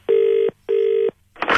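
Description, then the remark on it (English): A telephone ringback tone sounds twice as a call to an airport information line connects to an advisor, two steady buzzing pulses of about half a second each with a short gap, followed by the start of a noisy burst as the line picks up. “Your call will now be connected to an advisor.”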